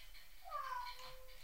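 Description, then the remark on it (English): A single short meow from a pet cat, fairly quiet and slightly drawn out with a falling pitch, heard on its own against a faint background hiss. “We're also going to check out our cat.”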